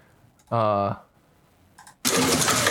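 A man's lawnmower bike: its small engine revs with a brief loud whine, falls quiet, then roars back in a harsh, rough burst that continues to the end.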